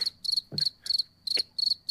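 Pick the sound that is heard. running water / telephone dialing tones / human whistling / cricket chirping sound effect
cricket chirping sound effect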